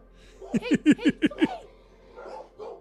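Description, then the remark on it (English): A dog barks six times in a quick, loud burst, evenly spaced, after a knock on the door, followed by a brief pause and a couple of softer, muffled sounds. “Your dog's barking because you thought someone knocked at the door.”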